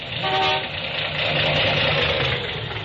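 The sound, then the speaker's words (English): A misfiring car engine idles steadily and loudly, its rough, uneven rumble filling the whole stretch, with a brief horn-like tone near the start. “Engine, huh? Hasn't got the pickup of a kitty car. Well, it's misfiring some.”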